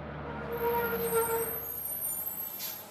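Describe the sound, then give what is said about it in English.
A large empty bus idles and rumbles to a halt, its brakes squealing faintly before a short hiss of released air near the end. No one speaks. “Finally, an empty bus stopped for them.”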